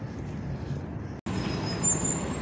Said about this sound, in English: And the bus just pulled up.